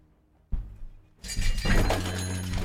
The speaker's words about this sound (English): And did I just spill all of my pencils? My I did. God. That's what it sounds like as I run over towards her.